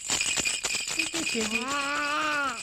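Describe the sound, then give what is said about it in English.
A toy rattle is shaken by an 8-month-old baby boy in a quick burst of bright clicking for about a second, then stops as a voice takes over with a drawn-out sound. “Give a good shake.”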